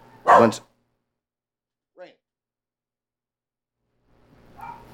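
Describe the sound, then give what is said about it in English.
A dog gives one loud bark, followed a moment later by a short, faint high yip. Then comes a stretch of quiet before a muffled, murmuring sound rises at the end. “I don't want to hear stupid dogs.”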